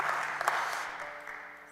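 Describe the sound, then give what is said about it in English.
An audience breaks into steady applause as praise to God, a dense wash of many hands clapping at once with a few sharper claps standing out, fading slightly toward the end. “Let's give God a head clap of praise for that.”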